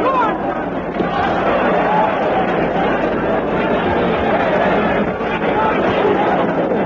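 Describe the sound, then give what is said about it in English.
A large English crowd roars and shouts continuously at a boxing match, a dense, loud wash of overlapping voices with occasional higher yells rising out of the din. “Crazy crowd, the English. Always shout for the underdogs.”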